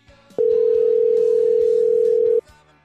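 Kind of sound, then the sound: signal or alarm, phone call ringing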